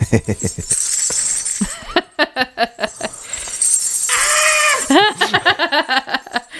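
Ghungroo ankle bells jingle in quick rhythmic bursts, bright and shimmering with each stamp, mixed with wavering voice-like sounds that rise and fall between the beats.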